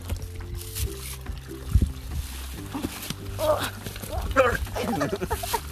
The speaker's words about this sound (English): Water. This is a creek, a babbling brook. Babbling brook.